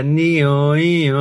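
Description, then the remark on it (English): A person imitates the first of three ambulance siren sounds with their voice, a sustained loud wail whose pitch rises and falls in slow, even sweeps, about two cycles. “Each ambulance we've got has got three different sounds. That's it. Give us a quick demo. Ambulance sound one.”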